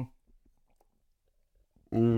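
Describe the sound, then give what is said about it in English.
Soft sipping and swallowing of water with small wet mouth clicks in near silence, followed by a sudden loud voiced exhale or sigh at the end. “They can hear us sipping that water.”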